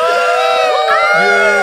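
A large crowd in a church arena cheers wildly as Commissioner Gabriel Goodell steps to the center of the stage, a dense, sustained roar of overlapping shouts and high whoops that stays loud throughout, with no single voice standing out.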